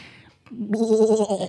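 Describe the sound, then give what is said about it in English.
A man's voice imitates a sheep's bleat, a single loud, wavering nasal 'baa' lasting about a second, with a vibrato-like tremble; a sheep voice he does once a year, for Three Sheeps. “Once a year, you're doing the voice of a sheep.”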